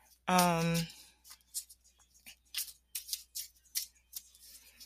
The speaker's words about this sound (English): Just, you know, don't be afraid to go for it as I'm shuffling here, waiting for a card to come out.